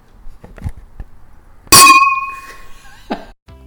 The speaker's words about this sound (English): Hold on, we gotta do the clink. Oh, wait.